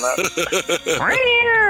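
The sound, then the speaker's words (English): A person's voice mimics an angry cat, Misker, being thrown at someone, starting with a quick series of throaty growling pulses that swell into a long, loud, rising yowl. “Yeah, throw the cat at him.”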